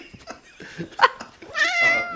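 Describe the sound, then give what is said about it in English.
A person does a fairly loud impression of a cat, with a few short yelping bursts and then a drawn-out, wavering meow at the end. “Probably got 3 seconds to meow.”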